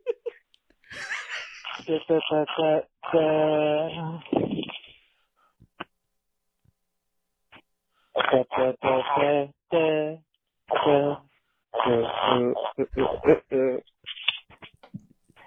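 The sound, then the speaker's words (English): A run of musical farts, squeaky and tonal with wavering pitch, coming in several close, fairly loud bursts separated by short pauses of silence. “These are the musical farts I've been working on.”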